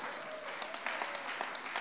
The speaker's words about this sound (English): Come on, clap your hands.